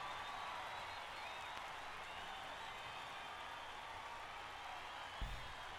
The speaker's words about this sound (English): Just a lot of clapping on this one. A lot of clapping for two dudes. Two dudes. Coming out. In a park. Singing some tunes.